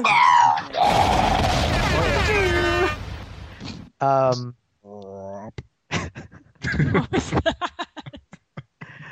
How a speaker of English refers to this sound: This is the part of the show where there's an explosion, and we love explosions on this podcast.